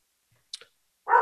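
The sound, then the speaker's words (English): A dog gives one loud bark near the end, preceded by a couple of faint, quick clicks in otherwise quiet surroundings; no one is talking. “We got the dog making its second appearance on Heavy Hole Podcast.”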